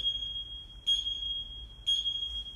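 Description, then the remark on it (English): A CrossFit clock timer at the Ronan CrossFit gym sounds a steady high-pitched electronic tone, punctuated by two louder, brighter beeps about a second apart. No one speaks. “Real life CrossFit clock. That's the one that sets off the action in here.”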